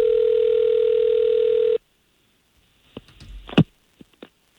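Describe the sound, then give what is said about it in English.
A steady telephone dial tone hums for nearly two seconds, then cuts off, followed by a scatter of short clicks and beeps as the number is dialed by the morning show hosts of K92.3, a country radio station in Orlando, fairly loud. “we're going to try to give her a call right now and find out why she's avoiding you, okay?”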